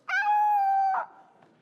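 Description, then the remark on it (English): A voice imitates a dog beginning to vomit: a loud, drawn-out, strained whining tone lasting nearly a second, cut off by a short guttural gulp, followed by a faint click. “The truth of the matter is that none of you would ever hit the snooze button again if the alarm that your clock made every morning was the sound of a dog beginning to vomit.”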